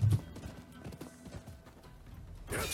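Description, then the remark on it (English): Horse hooves clip-clop in a video game trailer, a steady, repeated rhythm of fairly clear knocks, ending with a brief burst of brighter, hissy noise. “You just land upon a horse whenever you want?”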